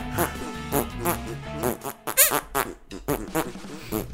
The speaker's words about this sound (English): Those are all compositions for his hand fart noises. Hold on. He's going to do a concerto later.